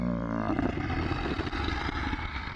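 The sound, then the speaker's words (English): A long, deep growl rumbles on without pause, low and throaty with a rough, gravelly texture, holding steady in loudness for a few seconds. “John pointed at Mumo Killowy, who let out a long, answering growl.”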